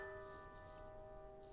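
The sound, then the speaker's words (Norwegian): Three short, high cricket chirps at slightly uneven intervals, heard over a steady electrical hum in an otherwise quiet moment. “Er det gresshopper i ørkenen?”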